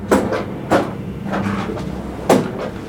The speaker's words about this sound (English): He turns to his desk drawer and opens it and pulls out a black Papermate pen.